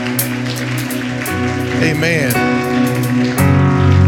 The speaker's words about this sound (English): Let's clap our hands unto the Lord and give him praise and glory.